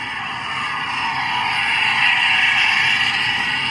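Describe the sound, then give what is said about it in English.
A recreational motorboat passes close by in a very busy area of recreational vessel traffic, its loud, continuous engine roar and hiss swelling slightly toward the middle and holding steady, with no voices. “then you'll hear a loud vessel passing close by.”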